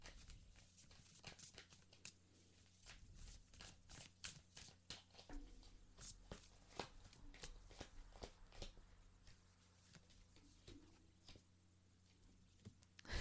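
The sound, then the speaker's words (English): Tarot cards being shuffled back into the deck, a steady run of soft, crisp flicks and taps in an irregular rhythm, fairly quiet over a low background hum, with no one talking. “So I was an idiot and shuffled the cards back in.”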